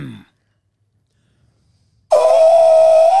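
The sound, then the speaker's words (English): After a short murmur and a long silence, a voice imitates an elephant's trumpet: a loud, high, sustained nasal blare with a whistly edge that holds steady until the end. “I used to be able to make a really good elephant noise, but I can't do it as good now.”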